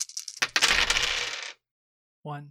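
Seven dice are rolled in a tabletop game, clattering and tumbling across a hard surface in a dense, rattling burst lasting about a second, followed by silence and the start of a voice.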